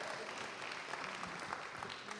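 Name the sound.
audience cheering and applauding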